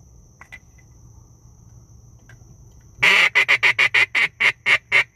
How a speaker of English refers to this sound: Swamp chicken. Swamp chicken. You saw one? Yeah. They're in that grass. They're in that grass right there. Behind us. Yeah, they should be throwing up here pretty shortly. The coots, marsh hens, moorhens, whatever you want to call them.